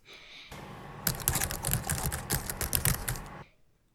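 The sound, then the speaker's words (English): Rapid, uneven clicking of keys on a computer keyboard, a steady flurry of crisp taps lasting a few seconds over a faint background hum, with no voices. “The sound is keys on a computer keyboard.”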